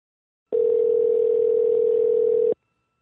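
A steady telephone dial tone hums for about two seconds, loud and unchanging, as someone places a phone call, then cuts off abruptly; no distinct dialing beeps follow and no one speaks.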